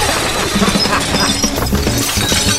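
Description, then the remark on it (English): Glass shatters loudly, a dense, continuous crash of breaking and clattering shards that fills the whole stretch without letting up. No voices are heard. “Is there more glass? No, same amount of glass, but you can just hear more.”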